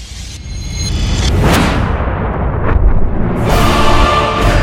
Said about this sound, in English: A gun. Extremely loud inside of a car. Matter of fact, my ears were ringing for a long time.